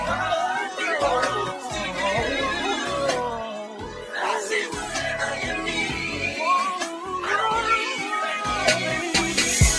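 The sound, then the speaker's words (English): A person does a cat impression, voicing a string of drawn-out, wavering meows, one after another over about ten seconds with short breaths between them. “I was, hey, if you'd have been like, "Nah, go ahead, do a solo," I was gonna do my cat impression.”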